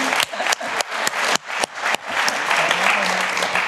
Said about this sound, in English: Hey, applause.